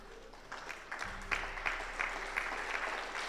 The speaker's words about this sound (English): But you're just politely clapping.